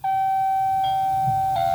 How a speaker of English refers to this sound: And then once that's been double tapped, go ahead and hit the doorbell here.